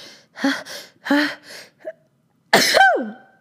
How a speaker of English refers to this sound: Okay, you've heard my sneeze.